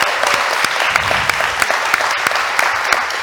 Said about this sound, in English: One more big round of applause for Umeko.